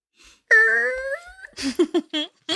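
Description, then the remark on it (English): A voice imitates a small single door creaking as it swings open: a drawn-out, wavering, slightly falling groan lasting about a second, followed by a few short breathy vocal bursts. “I'm all about proactive door opening noise. Yes, I'm very very on the sound effects tonight.”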